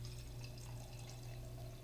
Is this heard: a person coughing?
no